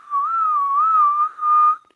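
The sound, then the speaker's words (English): A person whistles a short, wavering tune, one sustained phrase that briefly breaks and resumes before trailing off, with no talking. “Why are you whistling?”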